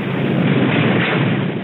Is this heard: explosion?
yes